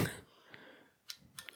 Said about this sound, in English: This is not the best bottle opener. It's not even a good bottle opener.